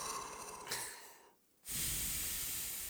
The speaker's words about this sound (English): You're like, I'm a loud breather. That's me as a person.